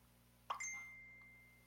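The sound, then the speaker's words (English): A single bright phone notification ding with a sharp onset, its clear tones ringing out and slowly fading over a low steady hum, with no talking. “Jesus Miss Phone Christ. going off.”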